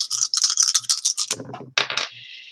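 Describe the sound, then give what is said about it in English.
Dice are rolled in a game, needing results of 4 or better; they rattle quickly in a hand or cup for about a second, then tumble and clatter across a hard surface, ending in a couple of sharp clacks. No one speaks. “You want to get dice that are 4 or better.”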